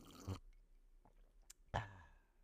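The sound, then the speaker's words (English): Sipping of morning coffee, made the day before and kept in the fridge: two distinct wet slurping bursts separated by a quiet pause with faint mouth clicks and a soft swallow, no talking. “We're going to have a sip of coffee and just, do some ASMR.”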